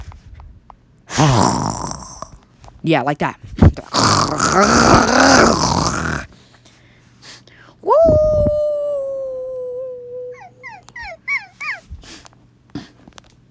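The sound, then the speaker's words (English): A person imitates wolves: several seconds of rough, throaty growling, then a long, sustained howl followed by a few short yipping rises, fairly loud, with a brief spoken remark. “And when it hit nighttime, he heard wolves in the distance howling. And they went, hoo-hoo! And growling.”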